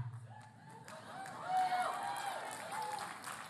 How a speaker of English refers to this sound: Okay, so some people are clapping. Some people are doing this right here.